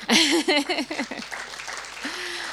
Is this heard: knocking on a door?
no